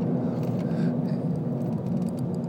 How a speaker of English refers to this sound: Oh, we're caught up with traffic. Got an accident up, man. And, ooh, boy, it's an ugly one.